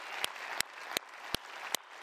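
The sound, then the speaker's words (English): A church audience applauds God in a steady, dense wash of clapping, with five sharp, louder claps standing out at an even beat above the crowd. No one speaks. “And so I just want to ask if you'd be willing with me, can we just give an applause to God and thank him for what he's done?”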